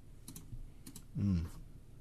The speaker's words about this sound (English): Excuse my clicking.